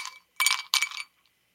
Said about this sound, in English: That sounded like that ice going into a glass. It sounds like a glass that needs some whiskey. and some ginger ale.